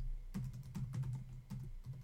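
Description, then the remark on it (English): Quick bursts of typing on a computer keyboard, with crisp key clicks arriving in short irregular clusters and brief pauses between them. No one speaks. “I mean, you say like it's not just typing things into a computer.”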